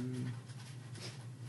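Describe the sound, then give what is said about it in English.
A dog licks at the bottom of her water bottle, which she has just emptied, producing a quick run of wet lapping and scraping noises over a low, steady background hum. “Well, she just emptied her water thing. Seven. Well, she's like licking the bottom of it.”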